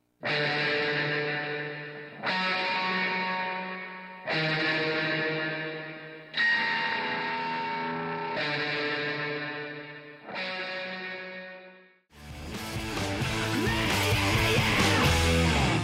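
A rock song plays on the radio station KGRG-FM: six loud, distorted guitar chords ring out one after another, each held about two seconds, before the full band crashes in with a dense, driving sound. No one speaks.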